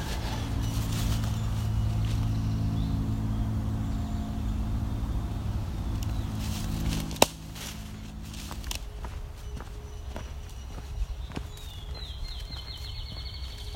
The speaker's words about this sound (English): So there's some field sparrow. Because we're now entering their territory somewhat.